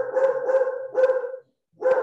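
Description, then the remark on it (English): A dog barks repeatedly, several loud, sustained woofs running together, then a short pause before another bark. No one speaks. “He's actually barking because it's become associated with right wing stuff.”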